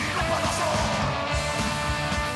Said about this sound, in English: That sounds like a pretty good mix right there. Saxophone and shouting. Yes. Well, I think the saxophone and the shouting are alternating. But now they're going.